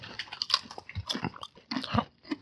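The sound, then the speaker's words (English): Crisp, brittle crunching of a potato chip, eaten with chopsticks, being bitten and chewed, a quick run of loud snapping bursts with short pauses between them, no voices. “Because they're eating a potato chip. There's only one kind. With eating potato chip with chopsticks.”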